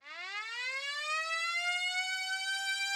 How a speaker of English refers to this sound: And there's the siren to end the period and our podcast as well.